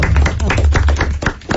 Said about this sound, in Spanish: Un aplauso al director de la Cultura.